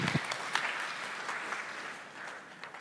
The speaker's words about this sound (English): I don't know why you're clapping now. You ain't seen nothing yet.